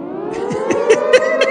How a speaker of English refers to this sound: Go ahead and sound the siren on that one, buddy.